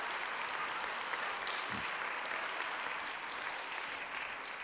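An audience applauds steadily to thank a man for leading a marriage conference held the day before: many hands clapping in a dense, even wash of sound that holds at a constant loudness throughout, with no voices standing out.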